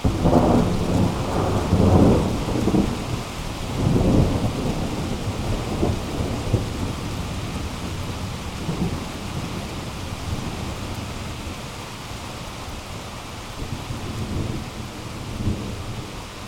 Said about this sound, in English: And in the background, if we bring it up a bit, you'll hear some of the sounds of rain as we're recording this.